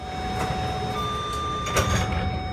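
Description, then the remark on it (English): Train sliding doors close with a broad rumbling whoosh and a soft thud near the end, over steady hum and faint electronic tones inside a carriage. “The doors are closing.”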